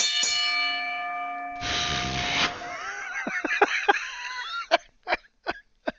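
A single bell strike rings out with a sustained, shimmering tone, then gives way to a brief rush of noise and a scatter of sharp clicks and chirps.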